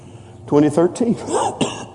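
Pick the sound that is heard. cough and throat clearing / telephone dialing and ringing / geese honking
cough and throat clearing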